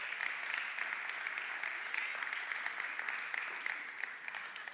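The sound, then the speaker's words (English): A crowd at a Warehouse Church service applauds steadily for several seconds to honor an intern, a dense, even wash of many hands clapping at once, bright and sustained with no voices standing out. “Clap it up for him.”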